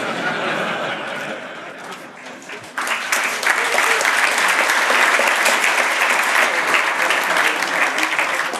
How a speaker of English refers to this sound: That's nice that you clap your hands, because I'm doing that from your tax money. Thank you.